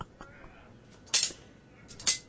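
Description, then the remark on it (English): A sword-clash sound effect: two sharp, bright metallic clangs about a second apart, each with a brief ringing tail, preceded by a few softer metallic taps. “Where's my Sword Ratchetness sound effects? Sword. There we go. Clink, clink.”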